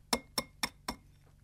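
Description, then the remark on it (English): An egg is tapped against a bowl four times in a steady rhythm to crack it open, for egg tempera paint. Each tap is a sharp, bright clink with a brief ring, and no talking over it. “So I'm going to just crack open the egg. I've got a bowl. I'm going to crack it on.”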